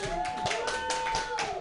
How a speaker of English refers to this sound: Hey guys, that was riffing. So can you applaud that, please?